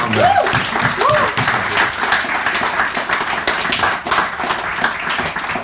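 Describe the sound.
A steady round of applause from the audience at a recruitment industry panel discussion, many hands clapping densely and loudly throughout, with a couple of brief rising whoops or voices early on.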